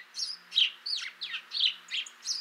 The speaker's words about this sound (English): The familiar birds were slipping into Holy Cross Church and interrupting the sermon with their exuberant chirping, and, as Duke August described it, their endless, unchaste behavior before the altar.